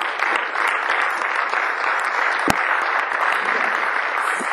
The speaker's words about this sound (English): Clap for the Lord. Hallelujah.